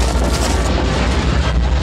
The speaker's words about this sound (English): Indy fled through the passageway, a huge boulder crashing at his heels.